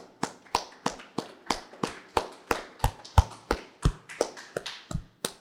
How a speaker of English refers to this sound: A few other things that we've added, because this has been 1 year since the Latino bookstore opened. So we should give a round of applause to the director of the Guadalupe Cultural Arts Center